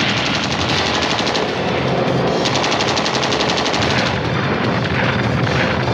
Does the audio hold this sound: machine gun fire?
yes